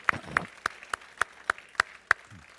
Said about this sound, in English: Hey, let's give the Lord a big clap offering, would you? Thank you, Lord.